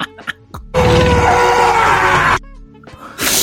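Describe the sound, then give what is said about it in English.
A man, Adam Driver as Kylo Ren in a Star Wars film, lets out a loud, strained scream lasting under two seconds, raw and harsh, preceded by a few short grunting breaths and followed by quieter rustling and another burst of noise. “You scream like that.”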